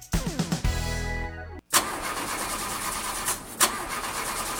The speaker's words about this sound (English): Car not starting? Yeah, just started doing this, and I don't know who to trust to take care of it.